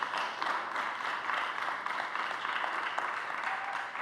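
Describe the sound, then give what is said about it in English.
A crowd applauds steadily, many hands clapping in a dense, even wash of sound that holds at a moderate level for the full few seconds without a break. “So let's give them a round of applause before I pray.”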